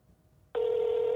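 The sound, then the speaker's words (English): After a brief quiet moment, a steady electronic telephone ring tone starts abruptly and holds at a single pitch, loud, as a call rings through a phone on speaker. “It's ringing.”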